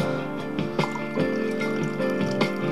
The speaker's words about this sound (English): I'm pouring coffee for now.